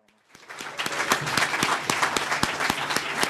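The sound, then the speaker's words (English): Teachers, students and parents burst into sustained applause, dense rapid clapping with scattered cheers rising over it, loud and steady for the whole stretch after a brief quiet start, as Mayor Vincent Gray and other city leaders celebrate IDEA school's accomplishments. “On a recent afternoon, with teachers, students and parents cheering, Mayor Vincent Gray was one of several city leaders who celebrated IDEA's accomplishments.”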